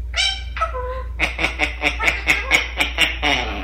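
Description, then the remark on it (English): Two parrots vocalizing in speech-like voices, fairly loud, teaching each other to have a conversation: a couple of drawn-out syllables, then a quick, rhythmic string of about ten chattering word-like sounds. “Both of those voices are parrots.”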